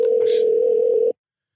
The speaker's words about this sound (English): Oh, no. You better answer that damn phone now.